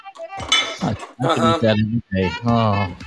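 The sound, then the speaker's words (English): Metal utensils clatter and clink as they drop into a kitchen sink, a busy jumble of sharp knocks lasting a few seconds, partly covered by voices. “That was utensils falling in the sink.”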